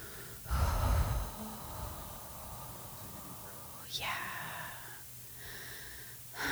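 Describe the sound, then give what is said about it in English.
A slow, deep breath drawn in and then let out, soft and airy, with a brief rush of air at the start and quieter breathy exhale following. “Take a deep breath.”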